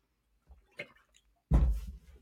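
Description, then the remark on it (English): Someone drinks juice: a few soft clicks and wet sounds, then a sudden loud burst of slurping and gulping that continues to the end. No one speaks. “Yeah, I'm about to drink some juice.”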